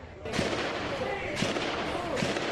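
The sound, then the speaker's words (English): Heavy gunfire crackles in repeated loud bursts, with three sharp volleys standing out over a constant rumble of shots and echoes, as hundreds of rounds are fired during a police operation against an active shooter in Jersey City, New Jersey. “You can hear hundreds of rounds being fired.”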